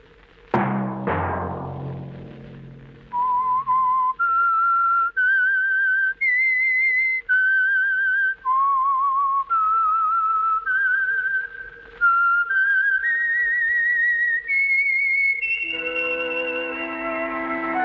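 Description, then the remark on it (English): Two sharp struck chords ring out, then a lone whistler carries a clear, steady melody of held notes rising and falling, ending as a sustained instrumental chord swells in beneath; the whistled theme tune of a Signal Oil-sponsored radio program. “Whistle be your signal for the Signal Oil program, The Whistler, each Sunday night at this same time.”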